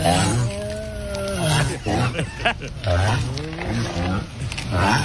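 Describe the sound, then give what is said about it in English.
Turtles mating: a steady run of deep, strained groans and moans, rising and falling in pitch, repeating over a rough, breathy background with no clear pause. “That's the turtle orgy one.”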